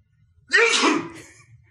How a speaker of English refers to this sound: I sneezed. Oh, I'm not allowed to sneeze.